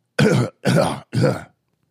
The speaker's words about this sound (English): I had to clear my throat because, you know, I knew my mic was off, so I had to clear my throat.